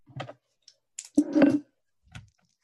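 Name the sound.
dice being rolled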